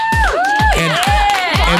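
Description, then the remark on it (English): A group of carolers from Yucaipa cheers and whoops in a studio, with gliding high-pitched shouts over the noise and heavy low thumps landing about every half second, loud throughout. “Give yourselves a round of quality applause.”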